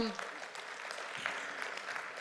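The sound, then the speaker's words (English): A church audience applauds as a clap offering to the Lord for having built several churches in Guatemala, a steady wash of many overlapping claps, a dense, sustained patter that fills the short clip without any distinct speech. “Yeah, give the Lord a clap offering for that accomplishment.”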